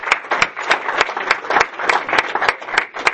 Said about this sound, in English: Can we give them a little round of applause?